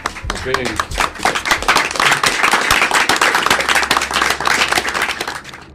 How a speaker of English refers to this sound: The jury was from Knox County. They are the pillars of our community. We should take our hats off to them, and we should give them a round of applause for... Thank you.